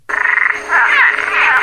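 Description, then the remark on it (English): A loud tree frog call: a quick series of raspy pulsed chirps that swells into a shrill, continuous trilling squawk, with no voices present. “a tree frog with a dark secret”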